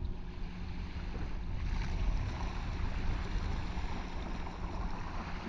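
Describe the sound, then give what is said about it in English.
Water washes and laps steadily, a soft continuous rushing with a low rumble underneath, even in level with no voices. “Allowing the sound of the water to wash away any of the tightness or distractions.”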